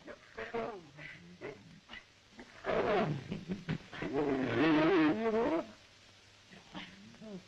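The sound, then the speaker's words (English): A lion growls at a man while playing, with low rumbling grunts building into two loud, drawn-out roaring bursts in the middle, then settling back into quieter growls. “But, then he starts growling at him.”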